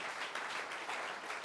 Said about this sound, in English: Give the Lord a big clap of praise here.